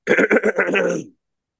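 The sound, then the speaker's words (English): A person clears their throat, a quick run of rough, choppy bursts trailing into a short gravelly rasp, lasting about a second with no talking. “Clear your throat.”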